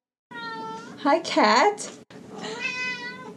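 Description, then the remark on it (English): A cat meows loudly and insistently at a door, drawn-out wails with rising and falling pitch, running nearly continuously through the short clip with a brief gap near the end. “I hear a meowing at the door, and it suddenly opens, and there's a cat that's meowing loudly.”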